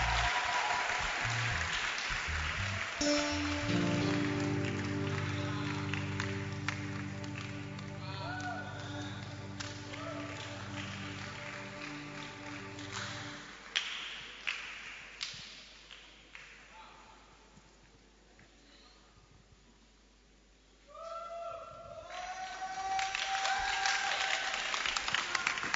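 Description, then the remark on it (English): A church audience claps to welcome a singer in a dense, steady wash of applause while a sustained keyboard chord hums underneath. The clapping thins to scattered claps, dips briefly, then swells loudly again. “Please clap.”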